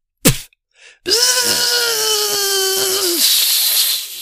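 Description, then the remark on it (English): A voice imitates a BB gun's air seals blowing out after it was pumped too many times: a sharp pop, a brief breathy pause, then a loud sustained whining tone that holds steady for about two seconds before trailing off into a breathy hiss. “And he had blown the seals out where the air was being compressed into while he kept pumping it.”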